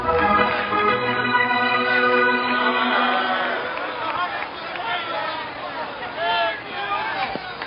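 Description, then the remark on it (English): A large stadium crowd in Cleveland roars as the Indians take the field against the New York Yankees, a loud, sustained wash of many overlapping voices that swell at first, then ease slightly while continuing steadily throughout. “Anyway, listen to the roar of the crowd as the Indians take the field.”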